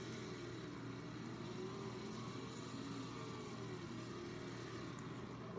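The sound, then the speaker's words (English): A video game race car engine hums at a steady, moderately loud pitch throughout, with layered droning harmonics and no talking, holding an even level until a brief rise at the very end, as the car is powered back up. “Now, let's power this car back up.”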